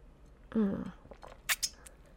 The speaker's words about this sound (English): Hold on. I need a sip of coffee.